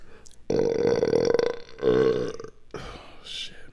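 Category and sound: human body sound, loud burp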